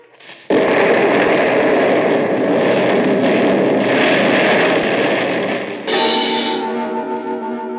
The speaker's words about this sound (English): I waited for the whistles to signal all clear. I counted off 30 seconds and then released the blast.